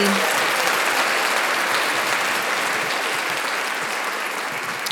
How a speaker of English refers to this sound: we got to give you that round of applause, bro.